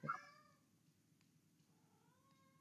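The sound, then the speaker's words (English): A cat carrying a dog bone meows twice: a loud, sharp meow right at the start, then after a pause a quieter, drawn-out one with a rising tone, over a low rumbling background. “My cat is carrying a dog bone.”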